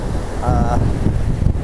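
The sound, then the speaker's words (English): Steady ocean surf rolls and washes at Bondi Beach, packed to capacity at 8:30 in the morning during a women's surf competition, mixed with gusty wind rumble and a faint busy crowd murmur, with a brief high whistle-like tone standing out in the middle. “Bondi Beach is filled to capacity. It's 8:30 in the morning.”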